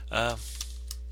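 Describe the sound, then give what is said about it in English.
A brief voiced sound from someone, followed by a couple of sparse, sharp clicks of typing on a computer keyboard as a person is looked up, fairly quiet. “Let me look him up. Matt Dillon. And I look like shit, but he's Matt Dillon. I got my keys on the wrong fingers.”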